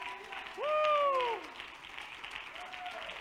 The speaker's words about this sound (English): Come on, clap your hands unto the Lord right now.